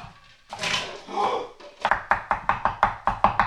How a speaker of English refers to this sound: You can't, if you're sitting at home trying to chop things up, you can't chop that fast. That is a seasoned professional chopping up lettuce into various quantities.